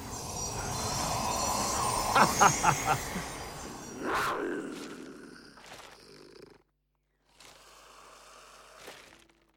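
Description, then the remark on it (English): A steam train approaches along the rails, rumbling loudly with a few rhythmic chuffs and sharp hissing bursts, cutting out briefly before the rumble resumes. “Ah, the engines are coming.”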